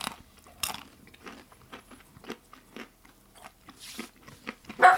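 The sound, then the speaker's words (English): Crisp crunching and chewing of hard-shelled M&M's chocolate candies, a steady series of bites and crackly munches over several seconds with no talking. “M&M's? Okay.”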